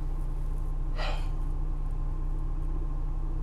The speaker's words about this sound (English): I'm about to sneeze. Hang on.